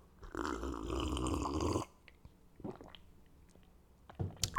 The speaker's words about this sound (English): I'm gonna take my water break. If you're new to the podcast, I take frequent water breaks because I'm doing this dolo. So sometimes my mouth gets dry. I need to drink a little bit of water.